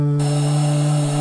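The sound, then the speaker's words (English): A recording of a Hoover vacuum cleaner, mapped over a keyboard and played as a single note: a loud, steady, pitched drone with strong buzzing harmonics that starts abruptly and holds unchanged to the end, with no voices. “So what that's doing is we've recorded the Hoover, right?”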